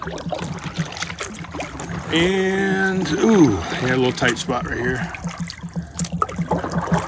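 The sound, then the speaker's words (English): Soft water sloshing and dribbling from paddle strokes as a small boat is paddled on the Ashley River in South Carolina, steady, with a man talking over it throughout. “I'm going to get out of here and go enjoy this nice leisurely paddle in solitude.”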